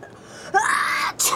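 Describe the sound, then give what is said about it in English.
A single sneeze, fairly loud: a rising, drawn-out voiced 'ah' builds for about half a second before ending in a sharp, hissing burst. “That's gross! You sneezed all over me!”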